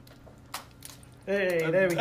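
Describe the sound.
Pens clatter in a few light, sharp clicks and knocks, scattered unevenly over about a second, as someone tries to juggle three pens, then a voice breaks in loudly and carries on over the last of the clatter.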